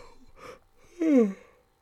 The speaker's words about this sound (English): Sorry, I've been yawning so much, man.